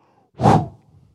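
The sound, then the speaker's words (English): One strong, breathy exhale, rising quickly and fading within half a second, followed by a faint, low trailing breath. “He breathed into man the breath of life.”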